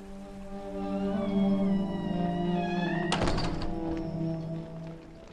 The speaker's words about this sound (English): After mooring up, I made my way up to his old house. The back door was unlocked, and I lifted the latch and let myself in.